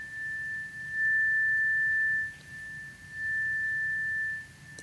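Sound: meditation chime ringing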